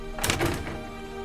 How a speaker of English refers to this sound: And he closes the door.